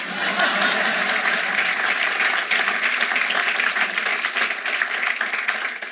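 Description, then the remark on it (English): A crowd claps steadily for a First Lady's line about the common values that unite Americans, a dense, loud wash of applause that holds at a constant level for several seconds with no voices rising above it. “And I thought you might clap for that.”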